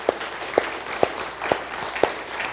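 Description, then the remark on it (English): A church audience applauds as a special thank-you to those who helped, a dense wash of steady clapping with sharper individual claps punching through at an even beat, about twice per second. No one speaks. “And can we give a round of applause? It's okay to clap.”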